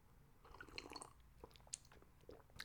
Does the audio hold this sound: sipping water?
yes